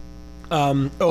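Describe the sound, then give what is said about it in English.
A steady, low electrical hum from a power converter drones quietly throughout, and two louder bursts of voice rise briefly over it near the end. “don't put that next to the power converter. I can hear a hum from...”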